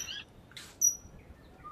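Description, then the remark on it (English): Saddlebacks on an island calling to one another in short, bright chirps and high-pitched whistles, scattered over a second or two against faint background hiss, with no one talking; one saddleback is on the ground. “So there are other saddlebacks responding at the moment.”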